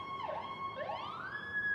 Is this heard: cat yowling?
no